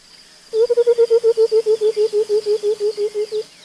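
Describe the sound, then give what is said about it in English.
A white-browed coucal's bubbling call: a quick, even run of about twenty low, hollow hoots, loud and slightly falling in pitch, heard on its own with no talking. “This call, likened to the sound of water running out of a bottle, is common in many parts of Africa.”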